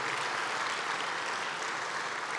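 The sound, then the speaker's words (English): A crowd at an AEDC economic forecast presentation applauds McKinley Research for its report work, a dense wash of many hands clapping at an even, sustained level with no voices rising above it. “Let's please give them a round of applause because I think that they deserve it for the amazing work that they do.”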